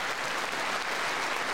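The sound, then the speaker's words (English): Steady, dense applause from a large audience at a speech about NATO and Ukraine, many hands clapping at once in a continuous wash of sound with no voices standing out. “She was like typing on her phone. She's like, oh, I need to clap.”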